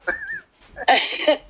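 A dog gives a thin, high whine, then after a brief pause lets out a louder, harsher yelping bark or two. No one speaks.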